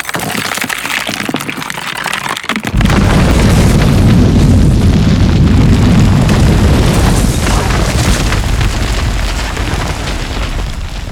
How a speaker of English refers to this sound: The stones started turning as before. Now the rod held them in place. And then a loud crack came from the door and dust flew from it.